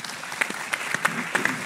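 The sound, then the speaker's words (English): Audience applause following a speaker's statement about being elected to Parliament: a steady patter of many hands clapping, with sharper individual claps standing out irregularly across the short burst, moderately loud and with no voices. “I am convinced I could do my share if elected to Parliament. Applause.”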